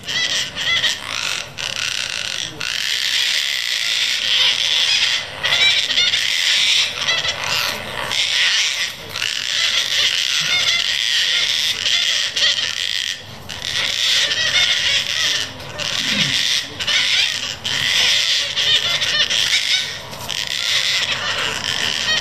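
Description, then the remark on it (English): Gang-gang cockatoos in Kingston give a long run of harsh, raspy, creaking calls, loud and nearly continuous for over twenty seconds, with only brief gaps between overlapping squawks. “Their call is more raspy than most other parrots, and this recording from Dave in Kingston just shows it off.”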